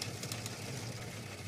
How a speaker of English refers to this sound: What is it? The newsroom behind us. Oh, it sounds like you have like the washing machine on. Nope. It's the newsroom